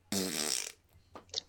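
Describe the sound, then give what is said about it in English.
A loud, buzzy fart noise blasts for about half a second, rasping, then a shorter, softer sputter follows a moment later. “more like Barry Fart, you know what I mean? With a Z, F-A-R-T, Z.”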